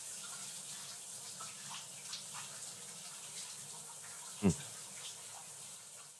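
Steady rushing water, like a running shower, hisses evenly throughout, with a single brief knock or splash partway through.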